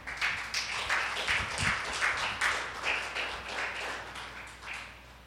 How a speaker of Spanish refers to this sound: Gracias. Un aplauso.